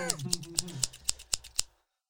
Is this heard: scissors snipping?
yes